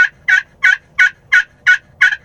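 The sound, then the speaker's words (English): A glass friction turkey call produces seven sharp, high-pitched yelps in a steady rhythm, each loud and raspy, imitating a turkey hen with no talking over it. “The glass one. The glass is louder on these ones.”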